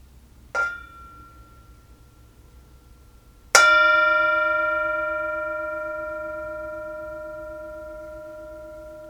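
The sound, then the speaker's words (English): A Tibetan singing bowl used as a meditation bell gets a light preliminary tap, then a full strike a few seconds later that rings out clearly and resonates for a long, slowly fading sustain. No voices are heard. “As always, we have the Tibetan singing bowl, and it is always a simple invitation, an invitation to presence, an invitation to the joy of this moment, to the sound of the bell.”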